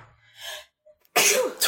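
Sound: sneeze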